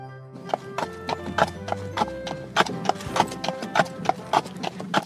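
Steady, rhythmic clip-clop of horse hooves on a hard surface during an evening carriage drive, fairly loud, with a faint low rumble of the carriage's moving wheels underneath and a brief horse whinny.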